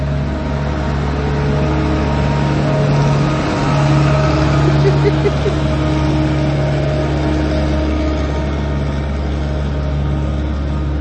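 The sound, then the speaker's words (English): A street sweeper truck rumbles by outside, its steady engine drone and hissing brush noise swelling slightly midway as it passes, loud and continuous throughout. “I've never seen this fucking truck this whole time I've been living here.”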